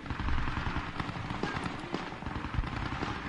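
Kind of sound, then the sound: sound effect, video game explosions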